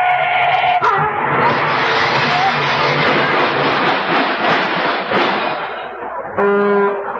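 A car collision sound effect: a loud, blaring horn blast, then several seconds of harsh, rushing screech and clatter, ending with another sustained horn honk, all loud.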